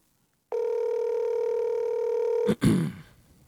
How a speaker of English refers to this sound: Like yeah, do like I just, throw it on speaker. Dial her up. It's our first live phone call on the podcast. There we can hear.